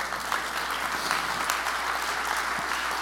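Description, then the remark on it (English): An audience at a church sermon clapping their hands, a dense, steady wash of many overlapping claps at a fairly even loudness throughout, with no voices standing out. “Clap your hands and say, I want to grow in the Lord.”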